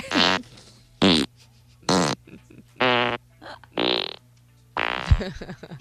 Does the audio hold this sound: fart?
yes